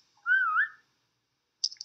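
A person gives one short whistle to call their dog, a beagle; the whistle slides upward with a slight waver, then silence follows before a few brief, high chirping sounds near the end.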